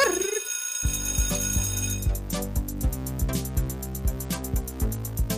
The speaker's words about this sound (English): Hey. Play that bell.